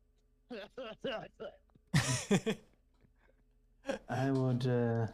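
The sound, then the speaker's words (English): A man coughs as he wakes up, in a series of short, rough bursts, then one louder hacking fit, followed by a strained vocal groan; the coughing sounds acted out by a voice. “All of you hear him coughing.”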